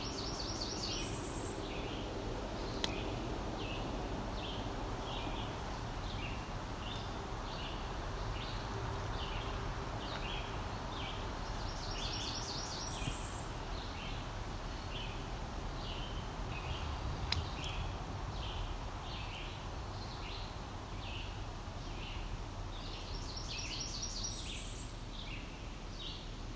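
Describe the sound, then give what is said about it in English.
Red-eyed vireos sing in the background, a steady series of short, high, repeated phrases over a low outdoor hum, with a few louder chirps breaking in now and then. “Do you hear the red eye vireos in the background?”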